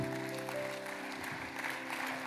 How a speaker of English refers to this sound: You give Lord a round of applause. Amazing.